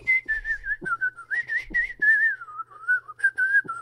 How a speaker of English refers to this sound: Anyway, so... for me, I don't think everybody can whistle. Maybe you can learn it.